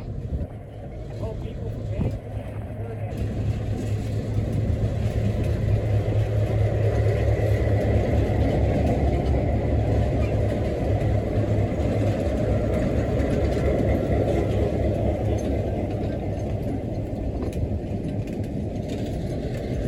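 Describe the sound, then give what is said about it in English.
A train rumbles steadily along the rails, a continuous, fairly loud low roar with a dense rattling texture that holds at an even level from start to finish. “So that's the message from the train and from the mountain today.”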